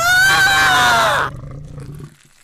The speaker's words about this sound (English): The sounds of the growls, slashing, gargling, tearing. It was slaughtering him.